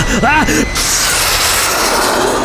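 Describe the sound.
A brief voice cry gives way to a loud, steady engine roar of an aircraft taking off, filling the rest of the moment with a sustained rushing blast.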